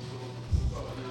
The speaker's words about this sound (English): Here, I'll load the 10 hours of farts back up. Load the 10 hours. To the farts again. To the farts.